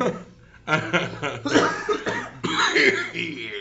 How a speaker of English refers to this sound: Everyone just cough right into the microphone. Beautiful. Let me wipe this phlegm off there.